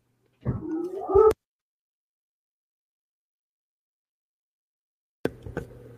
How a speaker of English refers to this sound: Sorry, I have dogs.